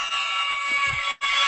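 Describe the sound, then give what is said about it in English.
A loud, harsh game show buzzer blares in a steady, raspy tone for over a second, cuts out briefly, then sounds again, signalling the start of a lightning round. No one talks over it. “And that buzzer means it's time for our lightning round.”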